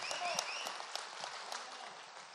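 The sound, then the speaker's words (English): A church audience applauds and cheers for God, a dense wash of clapping with a few high cheers and whistle-like whoops rising above it, holding fairly even before easing slightly at the end. “Can I get a big cheer and amen for the God of our universe?”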